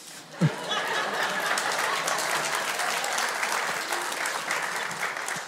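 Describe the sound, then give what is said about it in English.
The South community gives a round of applause on August 1, 2021, to a worship leader after he quickly changes a battery pack: steady dense clapping that swells quickly and holds at a fairly loud level for several seconds, with a few faint chuckles mixed in. “Two rounds of applause in one week.”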